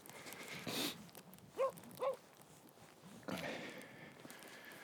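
dog

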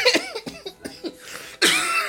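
coughing

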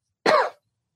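cough

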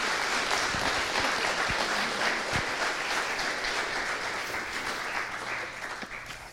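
round of applause

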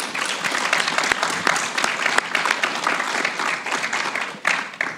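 studio audience applause

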